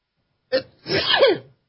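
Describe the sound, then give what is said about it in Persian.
A single loud sneeze: a short sharp intake followed by a forceful, breathy burst that trails off with a slight vocal tone, set against silence. “ای بابا چرا قد من عطسه میکنم امروز.”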